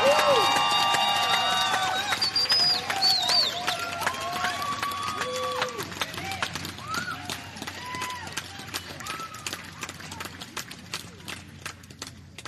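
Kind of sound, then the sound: crowd, audience cheering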